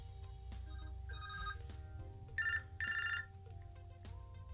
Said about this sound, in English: Oh, did you guys hear that? There's the phone ringing. That's real shit. We got a phone call mid-roll on the podcast.